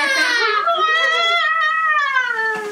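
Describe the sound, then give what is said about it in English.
A person vocally imitates a woman's piercing scream: one long, loud, high-pitched wail lasting nearly three seconds, wavering slightly and gradually sliding lower in pitch toward the end. “this woman would scream as if someone was stealing her purse, basically.”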